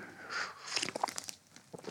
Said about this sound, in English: And I'm going to take another sip of my coffee.